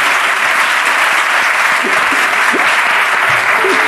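Steady, dense applause from a crowd fills the whole stretch, a loud continuous wash of clapping with no pauses and a few faint voices buried underneath.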